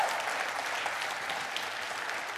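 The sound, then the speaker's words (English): A church crowd claps steadily for the Lord, many hands overlapping into a dense, even wash of applause at a moderate level without pause. “Come on, give the Lord a hand clap now.”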